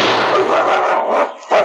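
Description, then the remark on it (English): A dog, King, snarls and barks ferociously as it attacks a man's gun arm at the entrance of a mine, a continuous aggressive growling attack with a brief pause before another loud burst. “Take this dog away!”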